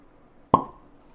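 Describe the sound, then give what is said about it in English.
A single sharp, hollow pop of a bottle of red wine being uncorked, loud and abrupt, with a brief ringing tone that fades quickly into quiet. “It was a cartoonishly satisfying pop.”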